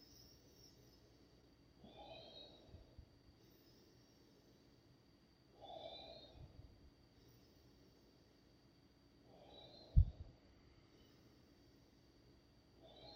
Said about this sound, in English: So now we're going to also pull it up into our neck. So it will look something like this, into the belly, into the heart, into the neck, and an effortless exhale, all in one continuous circular breath. So it looked like this.